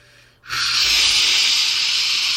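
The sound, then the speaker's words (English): After a brief quiet moment, a steady, loud hiss of falling rain starts abruptly and continues evenly, a dense wash of patter with no voices. “And then you hear the sound of rain.”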